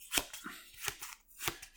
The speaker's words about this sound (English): And just shuffling 2 cards in your hand. It's hard to make sure you're random. I just have to distract myself and randomly stop.